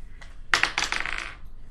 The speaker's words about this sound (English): Okay, can you roll me a luck dice, please? D20 or D100? D20.